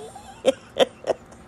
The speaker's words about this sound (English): excuse me, y'all, it's early in the morning for me. Let me clear my throat.